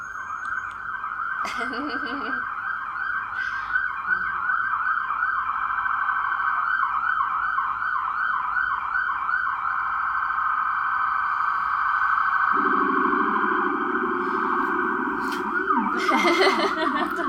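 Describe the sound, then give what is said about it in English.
Emergency vehicle sirens wail continuously outside, rising and falling in overlapping tones, fairly loud and steady for the whole stretch, with a second lower siren joining toward the end. “All the sirens.”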